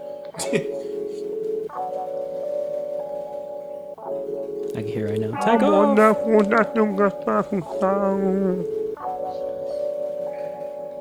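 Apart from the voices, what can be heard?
rap song playing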